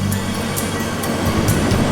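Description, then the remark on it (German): A train heading north pulls out of a station with a steady, heavy rumble and low droning hum, marked by regular hissing bursts about twice a second. No one speaks. “Schließlich rollte der Zug los und die Taschentücher flatterten.”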